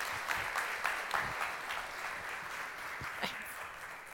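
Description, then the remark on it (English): A crowd at a Mother's Day service claps steadily in sustained applause welcoming a reverend who comes to minister, a dense, even patter of many hands with occasional sharper claps standing out, holding a fairly constant loudness throughout. “So would you give a round of applause and welcome Reverend Sharon Frank as she comes to minister to us today.”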